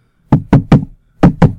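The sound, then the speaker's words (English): Solid knocks tapped out like a heartbeat: three quick, evenly spaced thuds, a brief pause, then two more, with no voices around them. “She still has a heartbeat, I think.”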